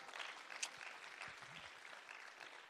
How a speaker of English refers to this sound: Oh, clap your hands to the Lord Jesus Christ.